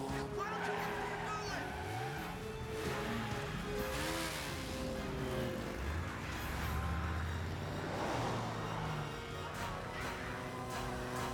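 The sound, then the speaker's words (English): A car being stolen by Batlings revs repeatedly, its engine pitch sweeping up and down as the vehicle pulls away, with a dense, steady layer of background noise throughout. “Are they gonna steal that guy's car?”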